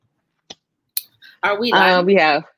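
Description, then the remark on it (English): Two quick, sharp clinks of a fancy drinking glass as it is being fetched, a moment apart and fairly faint, followed by a voice speaking. “Oh, wait, I gotta get my fancy glass because, you know, bitch be fancy.”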